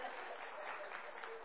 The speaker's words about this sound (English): No. Don't clap for that.